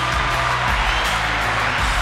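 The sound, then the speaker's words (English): A dense, steady burst of applause, like a crowd clapping continuously for about two seconds, loud with no voices over it. “So let me give you a round of applause.”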